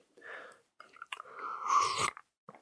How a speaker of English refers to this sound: Pardon my sip.